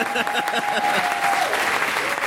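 An audience applauds in a dense, steady wash of many hands clapping, with a thin high whistle-like tone ringing over the first part before fading out.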